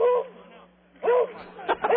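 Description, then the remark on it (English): A dog barks: a drawn-out yelping bark, a pause, another long bark, then a couple of quick sharp ones, all sounding thin and muffled as if over a phone line. “Just go out with your dog bark there”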